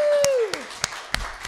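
A few scattered hand claps in a slow, uneven rhythm, about five sharp slaps, with a brief falling tone sliding downward at the start.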